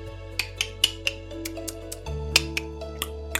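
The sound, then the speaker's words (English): A person makes a series of sharp, high tongue clicks to attract squirrels, repeating at a quick, slightly uneven pace over a steady low hum, about a dozen crisp clicks with no talking. “And did you know that you can make squirrels come to you by just making a clicking sound?”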